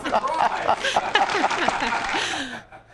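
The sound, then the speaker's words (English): Audience applause, a dense wash of clapping mixed with whoops and laughter from the crowd, steady for a few seconds before cutting off sharply near the end. “You hear the thunderous applause from the audience.”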